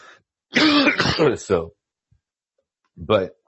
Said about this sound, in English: Excuse me. I'm still getting over a cough.